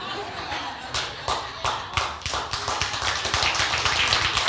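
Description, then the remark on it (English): A church audience claps for the preacher saying he will go longer in the service, starting with a few sharp, scattered claps that quickly build into dense, steady applause, with some voices mixed in underneath. “That's the first time I've ever got clapped for going longer or even talking about it.”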